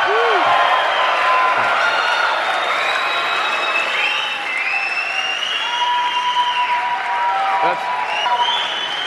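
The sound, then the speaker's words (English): A loud, sustained burst of crowd cheering and applause, dense clapping with whoops and high shouts rising over it, steady for the full stretch without a break. “And the crowd goes wild.”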